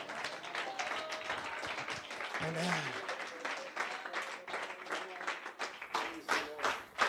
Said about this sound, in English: I want it. Let's clap our hands to the Lord.